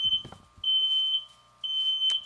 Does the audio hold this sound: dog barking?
no